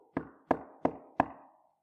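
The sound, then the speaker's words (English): Four firm knocks on a wooden door in a steady, even rhythm, each a sharp hollow rap with a short resonant ring, with no other sound around them. “Who is that knocking at my heart's door?”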